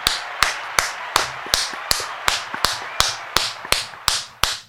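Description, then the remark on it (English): Steady, evenly paced clapping for Trenton High, about a dozen sharp claps in a quick regular rhythm, loud with a short ringing tail after each, and no talking. “Let's clap it up for them.”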